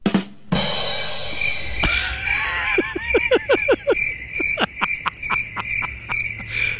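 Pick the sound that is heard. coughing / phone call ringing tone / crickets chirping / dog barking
crickets chirping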